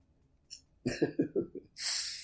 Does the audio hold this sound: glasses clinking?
no